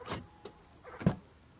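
Car door locks engage with a few quick mechanical clunks, a buzzy thunk at the start, a light click, then a heavier low thud, with no voices.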